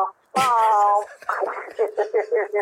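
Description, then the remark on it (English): A voice imitates the donkey noise from the film The Godfather Part III: a loud, drawn-out nasal tone, then a quick series of rhythmic, pulsing hee-haw bursts that gradually lose force. “The donkey noise, yo.”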